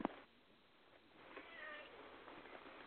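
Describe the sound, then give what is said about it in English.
A cat gives a soft, drawn-out meow midway through, faint, following a brief click at the start, with no one talking over it. “This cat is a fucking idiot.”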